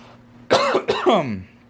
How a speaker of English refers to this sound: Ideally, hold on, let me cough.